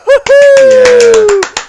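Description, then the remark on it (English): A short burst of hand clapping, several quick loud claps, under a sustained cheering voice that holds one long note before trailing off. “Applause for the episode.”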